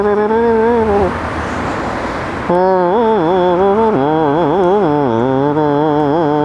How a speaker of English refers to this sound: You know, like that moaning sound. Those are three masters of the duduk, considered the best three.